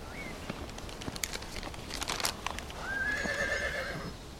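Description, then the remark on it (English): A horse and rider galloping in the night, in a scene created by David and Dan, with a quick run of sharp hoofbeats followed by a loud, high, wavering whinny that trails off near the end. No one speaks. “There was a rider in the night.”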